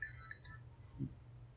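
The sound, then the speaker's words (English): A phone alarm, which overrides the phone's silent mode, sounds briefly: a few bright, high electronic tones in quick succession over a steady low hum, fading out within about half a second, followed by a soft low thump. “Was that your phone? Yeah, it was an alarm.”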